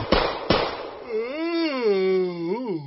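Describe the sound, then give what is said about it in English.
Two sharp, loud gunshots fired at someone's feet crack in quick succession, followed immediately by a long, wavering vocal cry that rises and falls in pitch. “Shoot feet! Shoot feet! Oh! Your gun at my feet!”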